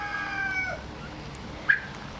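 A flock of 11 heritage turkeys, toms and females, call from their pen: a thin, drawn-out call at the start, then a short, sharper squawk stands out near the end over a low background hum.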